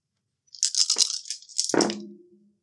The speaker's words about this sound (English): We rolled a 10 on our event die, which is an encounter, and the encounter is number 4.